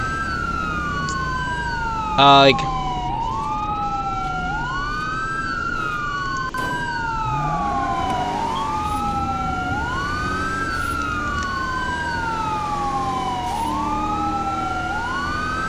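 An emergency vehicle siren wails continuously in repeating rising-and-falling sweeps, fairly loud and steady over traffic rumble, with a brief sharp burst of noise near the start.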